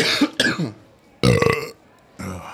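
Several loud burps erupt in quick succession, two back to back, then a longer, rumbling one after a pause, and a final burp trailing off. No talking alongside.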